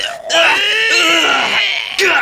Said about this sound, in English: Like, it was the audio of two no-names screaming and a close-up of John Travolta smiling evilly into the camera.